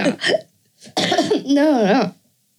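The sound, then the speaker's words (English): A couple of small, abrupt coughs from someone who has been ill for weeks, a short one and then a sharper one, followed by a brief voiced, wavering vocal sound, moderately loud with pauses between. “Sorry for the little coughs, people.”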